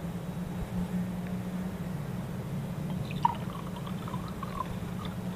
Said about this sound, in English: Imagine an empty glass being slowly filled with water.